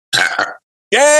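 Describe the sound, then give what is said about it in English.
A loud burp: a short rough double gulp, a brief pause, then a long, drawn-out croaky belch that carries on to the end, with no talking. “that was the first food fight burp”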